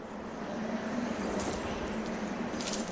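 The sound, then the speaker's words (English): Keys on a ring jangle softly in a few short metallic bursts over a low steady hum, faint, with no talking. “The ring of keys?”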